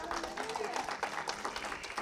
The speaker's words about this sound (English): Go ahead, give God a hand clap.